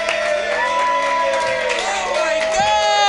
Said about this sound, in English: So hey everybody, clap your hands wildly.